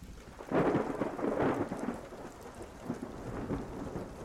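Steady rain hisses throughout while deep rolls of thunder swell early on and then settle into a softer, ongoing rumble. No one speaks.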